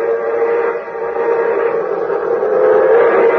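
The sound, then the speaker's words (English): The Milwaukee Railroad's orange and silver streamlined Hiawatha locomotive roars past, its loud rushing rumble steady throughout while a sustained whistle blows over it. No one speaks. “Here comes the champion of the railroad. Here comes the Hiawatha.”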